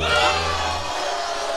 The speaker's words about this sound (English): I'm not booing the waiting room. I'm booing the idea that we have a name for it, and it's the waiting room.